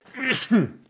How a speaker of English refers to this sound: By the way, Robert Saleh said this week, as I pause for 1 second to sneeze.